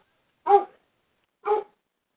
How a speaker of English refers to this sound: I've got a dog barking, too.